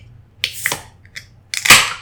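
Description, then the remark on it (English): A bottle of Invasion Tropical Pale Ale from Cigar City Brewing Co. of Tampa, Florida, being cracked open: a few quick metallic clicks and scrapes, then a sharp, bright pop with a short fizzing hiss that fades out. No one speaks. “I'm just going to crack this bad boy open.”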